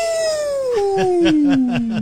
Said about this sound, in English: Boy, that wolf sounds weaker and weaker as we go. He's been ravaged by the storm, the bomb cyclone.